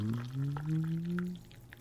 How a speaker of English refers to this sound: Excuse me, just pour on a coffee.